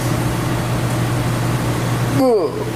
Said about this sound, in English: I'm gonna fast forward here. There's about 20 seconds left on the microwave.